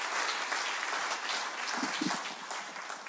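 A crowd applauds steadily for about three seconds, a dense wash of many hands clapping at even volume, filling a large room with no voices standing out.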